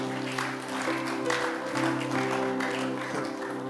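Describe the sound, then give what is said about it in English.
A church audience claps for the Lord together in a dense, continuous patter, steady and fairly loud, over sustained musical chords that hold underneath throughout. “I know things, so give the Lord a clap of friend.”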